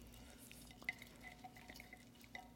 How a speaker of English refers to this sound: Before I read, I need to get a drink of water real quick. Hold on 1 second.